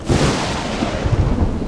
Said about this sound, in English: From the south it came, swells as high as the ship. With thunder so vicious, it cracks hard like a whip.